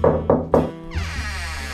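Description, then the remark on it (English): A client knocks on a detective's office door: three firm, evenly spaced knocks, each a dull thud, followed by a sustained low musical tone that swells and lingers. “Which was just as well, because if Girl Friday had been there, she would have scared off the client who knocked on the door.”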